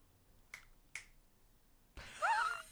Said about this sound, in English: The audience, because it is an audio medium, not visual, they often love to hear us do visual things on the podcast. I'm hitting Rupert on the butt.